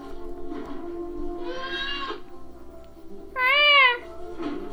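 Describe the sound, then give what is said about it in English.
Two cat-like Wookiee growls, yowling and meow-ish rather than deep. A shorter call comes first, then a louder, wavering one, with no talking over them. “That's not even like a Wookiee growl. It's just. It's like a cat.”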